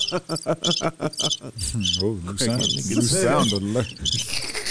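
A digital cricket alert sound: electronic cricket chirps pulse rapidly and rhythmically for a couple of seconds, loud, then give way to a wavering, voice-like warbling tone with chirps still flickering above it.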